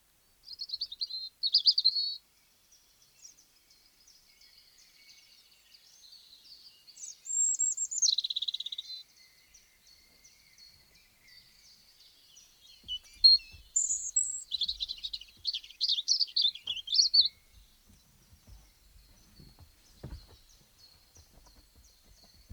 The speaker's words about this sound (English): And here's the robin, our final bird.